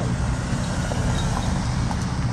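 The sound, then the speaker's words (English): A steady roar of street traffic with heavy low rumble, engines and tire noise blending into continuous wash as cars go by; no voices. “Then why don't you stand and block the traffic, my dear?”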